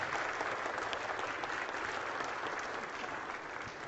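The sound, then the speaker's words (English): An audience applauds a family who have just been dedicated in the name of the Father, Son and Holy Spirit: many hands clapping in a dense, steady wash of sound that holds an even loudness throughout without easing off, and no voices stand out above it. “Round of applause, please, for this family.”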